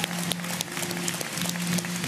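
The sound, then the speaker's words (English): An audience at a church service claps steadily for 13 people in the service giving their life to Jesus, dense overlapping applause at a fairly even level with no one speaking, along with a low sustained hum underneath. “In Jesus' name, we all said, come on, can we give the Lord an applause for 13 people in this service giving their life to Jesus?”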